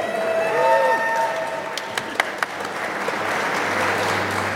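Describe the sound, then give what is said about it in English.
A large, standing-room-only crowd applauds and cheers steadily as the designer of the game Tooth or Bear is introduced, a dense wash of clapping with a few whoops and whistles rising above it early on, then several sharp louder claps. “Wow, that was a big crowd.”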